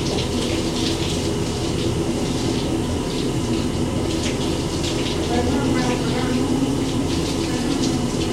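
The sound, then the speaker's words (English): Shower water runs down a person's body in a steady hiss, a dense continuous spray that holds the same level throughout without pausing. “I'm just letting this water really run down my body.”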